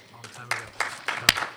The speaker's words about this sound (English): Applaud for Congress, don't applaud for me.